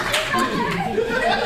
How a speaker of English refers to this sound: Right now, for the audience that can't see, she's walking down the middle of the audience. People are just screaming for attention. She hands it off to a young lady with a flower dress. See the applause.